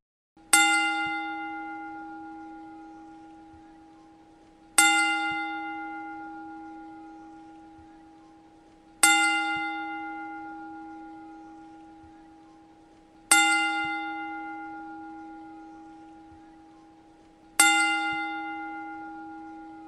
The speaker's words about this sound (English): Unfortunately, this past week, Bruno Sammartino passed away, and we'd like to pay tribute to him right now with a 10-bell salute.